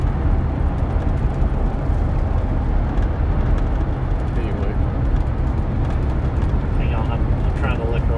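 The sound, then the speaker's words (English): A car behind the speakers rumbles steadily, a loud, continuous low engine and road drone that fills the whole stretch, with faint voices murmuring underneath. “What is that car behind us?”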